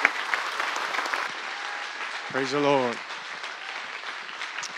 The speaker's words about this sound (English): Or to give your pastor a hand clap, and I'm going to walk out to his office.